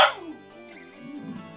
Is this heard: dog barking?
yes